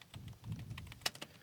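Rapid, light clicking of typing on a new Mac chiclet keyboard, irregular key taps with a couple of sharper strokes near the end, over a faint low background hum.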